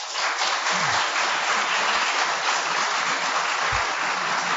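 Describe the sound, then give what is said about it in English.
A crowd applauds steadily to vote for item three, that less emotional control predicts good recovery from psychological trauma, as the fiction. It is a dense wash of many hands clapping at an even loudness for several seconds, with a few low thumps underneath and no voices. “And item number three, if you think that less emotional control predicts good recovery from psychological trauma, applaud now.”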